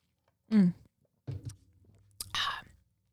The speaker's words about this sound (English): Hold on, I have to take a sip.